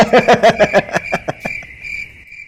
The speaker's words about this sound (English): The crickets have made a return. Yeah, haven't heard the crickets in a while.